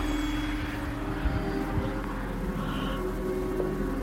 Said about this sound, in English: It was just kind of all around. And all I around. Felt like it was just kind of swirling all around us. You can hear cars, but you can also hear, like, trumpets in the sky somewhere. I don't know.